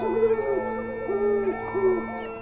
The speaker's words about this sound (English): Oh, owl, owl on the tree, how many hoots does it take to get to the center of a hooty hoot hoot?